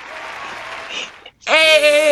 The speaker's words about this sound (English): Supposedly, I'm the youngest guest on the show. So, you guys clap for me. Put sound effects.